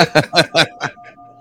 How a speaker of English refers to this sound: Well, there you go. There's the bell.